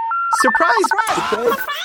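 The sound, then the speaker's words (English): A quick run of telephone keypad tones as a number is dialed to call someone in Houston, Texas, short steady beeps in a rapid sequence, with voices mixed in under and between the tones. “Today we're going to call somebody.”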